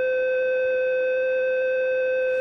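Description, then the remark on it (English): The International Space Station's caution alarm, from recordings posted by the European Space Agency, sounding when a component fails or a system is not working properly: a steady, piercing electronic tone holding several stacked pitches at once, continuous at moderate volume without pause or variation, with no voices present. “the European Space Agency has recently posted recordings on their SoundCloud account.”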